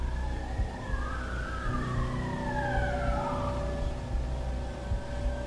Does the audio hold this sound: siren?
yes